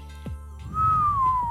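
A single sustained whistle rises in, holds, then slowly slides down in pitch, clear and fairly loud over a low, rumbling background, lasting about a second.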